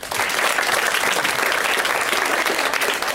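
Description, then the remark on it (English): A room full of people claps steadily for a few seconds, answering a call to clap if aged 35 or over: a dense, even wash of applause with no speech over it. “Clap if you're no less than 35.”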